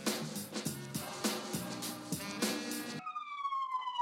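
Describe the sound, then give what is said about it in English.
A police siren wails with a steady tone that slides downward in pitch, following a few seconds of loud, rhythmic music-like pulses. No one speaks. “What a time to pick up right as the 5-0 come for you.”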